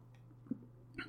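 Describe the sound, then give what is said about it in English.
A faint sip of coffee: a soft mouth sound, then a brief slurp near the end, over a low steady hum with no talking. “I have to take a sip of this coffee.”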